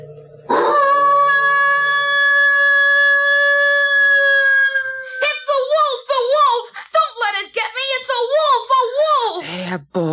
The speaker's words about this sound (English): Don't be frightened. It's only our neighbor's dog baying at the moon. Go to sleep.